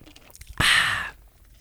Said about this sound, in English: Excuse me while I take a big swig of my bitch juice.